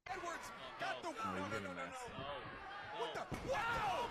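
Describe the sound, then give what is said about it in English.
A baseball bat swung at a chair placed on top of a wrestler during a wrestling match, clipping the chair and hitting him in the face, heard as a few sharp, hollow impacts spaced over several seconds, mixed with crowd noise and indistinct voices throughout. “So he swung the bat and he fucking clipped the chair and was supposed to hit only the chair but missed and hit him in the face with it.”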